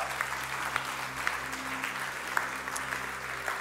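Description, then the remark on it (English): A room full of people applauds steadily on Good Friday, the dense patter of many hands clapping continuing evenly throughout with a few sharper claps standing out, moderately loud. “And if we're going to clap on a good Friday, I think we should really clap, including you guys online.”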